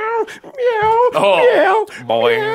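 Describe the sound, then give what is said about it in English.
A silly cat in a funny Facebook video, falling over, meows several times in quick succession, with loud, drawn-out, wavering cries that rise and fall in pitch. There are about four calls with brief gaps between them. “I saw a funny video on Facebook the other day with a silly cat.”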